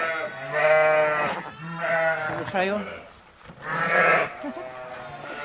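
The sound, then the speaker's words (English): Newborn lambs, born this morning, bleat in a series of high, wavering cries, several calls overlapping with brief pauses between them and a person talking quietly underneath. “Yeah, born this morning. Just giving them iodine spectrum. And we tube all our lambs with Beeston”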